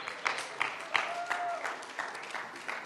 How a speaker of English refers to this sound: Thank you, worship team. I think we ought to give them a hand clap of thanks for these guys. They work very hard.